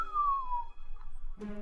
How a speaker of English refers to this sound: As you are standing here arguing about what to do, you hear a whistling in the air.